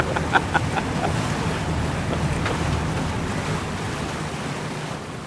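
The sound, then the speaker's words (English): A boat with huge picture windows glides steadily across a still lake with islands, its low engine drone running under a broad wash of splashing and rushing water, with a couple of brief knocks near the start and no talking. “The boat has huge picture windows, and the view as you glide along is picturesque.”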